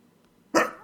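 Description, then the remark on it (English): A single sharp sneeze bursts out after a quiet moment, loud and breathy with a bright hissy edge, followed by a short trailing exhale. “That was the first podcast sneeze.”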